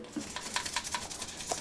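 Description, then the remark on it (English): Quick, rhythmic toothbrush strokes, about five per second, rasp as a circuit board is scrubbed with dish soap under running hot water in a kitchen, with small clicks and clatters mixed in. No one speaks. “but we just went to the kitchen and ran the whole board under hot water.”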